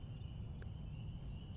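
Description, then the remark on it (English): Frogs peeping in a faint, unbroken chorus, a steady high-pitched shrill hum with one brief brighter chirp partway through, over a low rumbling background and no voices. “Oh, listen to those frogs a-peeping.”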